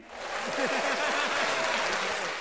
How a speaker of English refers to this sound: We need like a another hand clap.